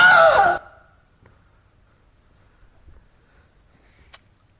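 A single loud, sharp scream, the recorded Wilhelm scream stock sound effect, bursts out at the very start, lasting about half a second, followed by near silence and one faint click toward the end.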